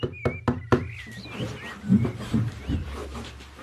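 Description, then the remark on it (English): Four sharp knocks on a door in quick succession, crisp, followed by faint background rustling and murmuring. “There was a knock on the door.”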